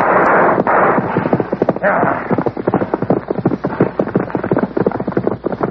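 Horses gallop, hooves clip-clopping in a fast, steady rhythm over a broad rushing noise, the beat continuing throughout.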